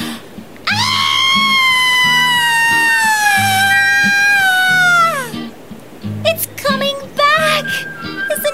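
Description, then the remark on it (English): A person lets out a long, loud, high-pitched panic scream on spotting a wedge-tailed eagle, holding for several seconds with a slowly falling pitch, followed by short excited voices over a low, steady background hum. “Could you not scream? It sounded like you'd seen another snake.”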